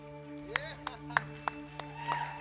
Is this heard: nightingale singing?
no